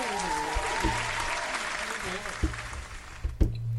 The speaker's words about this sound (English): But we getting a little round for this. I'm going to clap it up for my guest of last week.